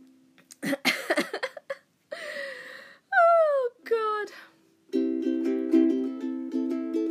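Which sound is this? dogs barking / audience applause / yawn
yawn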